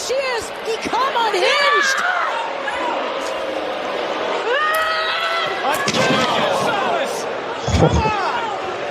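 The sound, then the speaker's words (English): A wrestler crashes into a ringside barricade from a Snake Eyes move, with a loud, heavy slam and a deep thud, set against a constant roaring crowd and overlapping voices. “Bad Snake Eyes bump over here on the barricade, or at least the sound to it makes it seem bad, right?”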